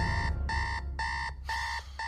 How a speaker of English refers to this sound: This is because the three laws are laid into the movie's preface, with the music, some natural sound to imply a flashback, and then we awaken to an alarm clock.